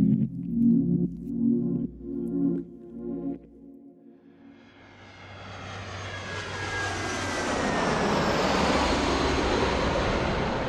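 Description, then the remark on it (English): An airplane bound for Thailand swells from a low hum into a loud, steady roar with a high whine, as if the plane is taking off or passing overhead, preceded by a brief rhythmic droning. “So before Jakob can meet with the buyers, Amaryllis gets on a plane for Thailand to intercept him.”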